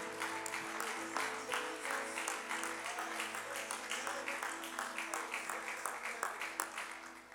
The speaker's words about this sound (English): Let's clap our hands to the Lord and give him praise one more time.